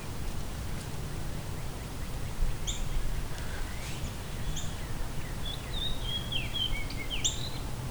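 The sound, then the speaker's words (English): A fox sparrow sings a series of bright, slurred whistled notes, building into a quick warbling phrase near the end, over a steady low outdoor rumble. “That's the fox sparrow song.”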